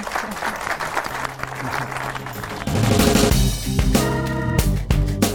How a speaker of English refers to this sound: So I'm going to thank you all for all of your amazing insights today. Round of applause. Thank you, everybody.